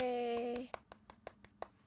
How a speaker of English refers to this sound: Yay. I'm clapping as softly as I can so it doesn't, like, make the sound. Because he's a sound editor, and he'd be like, thank you, but don't clap so loud.